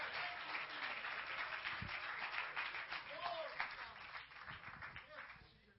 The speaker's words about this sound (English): Clap your hands to the Lord as you're being seated. Come on now.